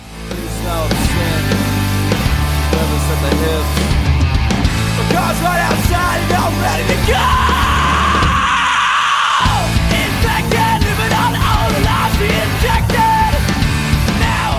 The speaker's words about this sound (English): when it kind of drops out and it just lingers on that scream and then goes back into the chorus